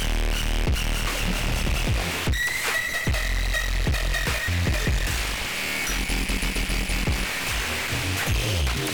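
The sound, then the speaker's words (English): Heavily distorted electronic music processed through the Runktifier, a Ubik digital filter plugin, with thumping bass hits and a gritty, crackling, buzzy texture smeared across the mix, distorting most where there is a lot of sub, staying loud and dense throughout with shifting filtered tones. “This is a digital filter Ubik. This thing is crazy, especially you'll notice when we get into the song right here, when it gets to the parts where there's a lot of sub, it really distorts it in a very beautiful way.”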